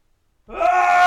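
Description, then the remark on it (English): A man's voice imitates a primal scream: after a brief silence, a loud, sustained, strained vocal cry starts abruptly and holds steady with a raw, harmonic-rich tone. “And I mean, I'll be fair, it was kind of amazing, but after a primal scream. Yeah, he'd screamed. What did that sound like”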